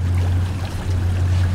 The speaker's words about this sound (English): As we pull out of the Norwalk Cove Marina